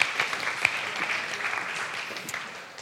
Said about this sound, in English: Great to have everyone in the room. Yeah, 2 claps. Awesome.